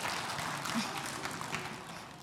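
A round of applause from a group, a steady dense patter of many hands clapping for a couple of seconds, fairly soft and fading slightly toward the end.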